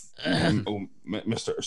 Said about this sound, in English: you're coughing. You've got COVID.